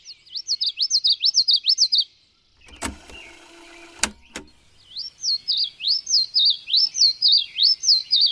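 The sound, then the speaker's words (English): A high-pitched bird song of rapid, rhythmic chirping phrases, clear, pauses while a brief mechanical whirring and a few sharp clicks sound, then resumes and keeps going. “An App That Helps You Hear High-Pitched Bird Songs”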